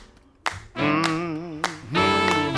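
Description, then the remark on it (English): Four sharp hand claps land in a steady, even rhythm, about two per second, over loud sustained, wavering musical tones that swell in shortly after the first clap. “Clap your hands now.”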